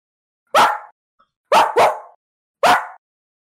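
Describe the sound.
A person imitates a dog barking: four loud barks, a single one followed by a quick double bark and then a final one, with brief silences between them.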